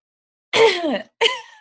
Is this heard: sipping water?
no